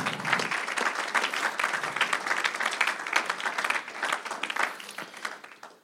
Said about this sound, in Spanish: Entonces, dele ese aplauso al Señor, hermano.